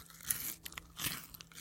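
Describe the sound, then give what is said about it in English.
Someone eats crunchy food into a microphone: two loud, crisp crunching bites with a run of smaller crackly chewing snaps between and after them. No one speaks. “I'm going to eat the end now.”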